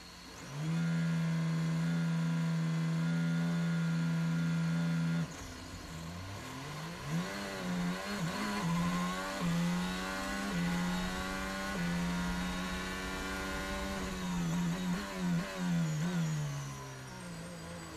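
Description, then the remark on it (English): A racing car engine idles loudly and steadily, then rises and falls through a series of revs as the last car rolls forward slowly, approaching the starting grid, with no voices. “last car approaching the grid now.”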